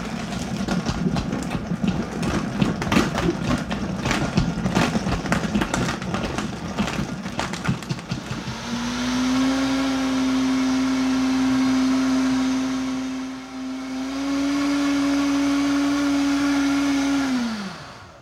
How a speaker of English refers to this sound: And then, of course, some ice. Okay, on goes the lid, and we power things up and start blending.